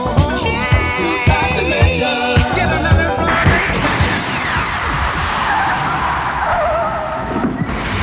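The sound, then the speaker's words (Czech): A DeLorean car's tires screech as it skids and roars off, loud, with a rising, whooshing sci-fi time-travel effect swelling over the engine noise toward the end. No one speaks. “Nastavujeme náš DeLorean a uslyšíme se za 10 let.”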